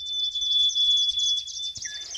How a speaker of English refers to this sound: And you're listening to the bird songs of 53 of Australia's most threatened bird species.